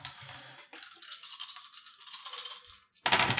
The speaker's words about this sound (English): Rolling in little separate tiny groups. That's great dice rolling technique. Yeah, that's what you got to do.